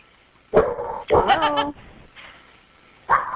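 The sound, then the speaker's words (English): A dog left home alone barks three times while repeatedly dialing 911 on its owner's iPhone: a short bark, then a longer, whiny, drawn-out bark, a pause, and one more sharp bark, moderately loud. “So the dog was hitting 911 on its iPhone, calling 911.”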